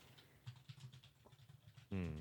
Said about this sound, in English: Everybody's furiously typing